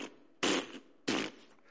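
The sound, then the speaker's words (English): A noisy washing machine running, with two loud, broad rumbling thumps about half a second apart over a faint steady hum, and no voices. “So, what is that? It's the washing machine.”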